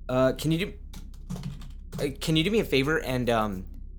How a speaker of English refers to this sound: Yes, typewriter.